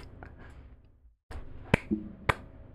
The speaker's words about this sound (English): Bravo. I'm crying. I didn't know I was getting a pity clap.